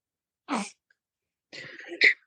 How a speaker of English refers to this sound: So I hear the little newborn in the background. Yes, she is not deciding. She doesn't know what she wants. She's like, she doesn't know if she wants the bottle, the binky. She's just, you know, trying to figure out her baby life.